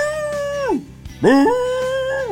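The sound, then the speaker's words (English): A person's voice imitates the bark of their Lab, coonhound and Great Pyrenees mix dog, which barks like a coon dog: two drawn-out, wavering cries, the first sliding downward and the second swooping up and holding, loud. “Well, my lab coon Pyrenees barks like a coon dog, so she's more like...”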